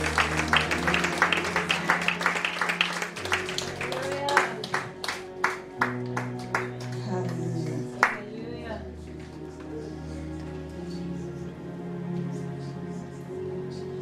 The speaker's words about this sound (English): God bless you. God bless you. Give the Lord a clap of praise.